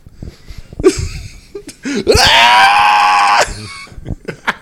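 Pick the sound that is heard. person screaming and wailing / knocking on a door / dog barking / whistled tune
person screaming and wailing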